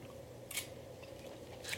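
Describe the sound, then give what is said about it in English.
Someone chews octopus, with two wet, squishy crunches about a second apart over a quiet, low background hum. No one speaks. “I'm seeing how many chews you get this time.”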